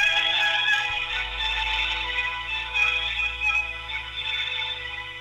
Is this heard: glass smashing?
no